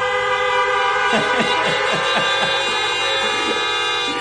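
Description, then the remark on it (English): Many car horns, honked by a church audience as an amen, blare together in a loud, continuous chorus of overlapping pitches, with short toots popping in over the sustained honking from start to finish. “If you believe that, give a honking amen.”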